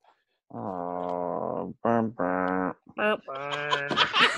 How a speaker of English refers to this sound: Oh, well, now the cat.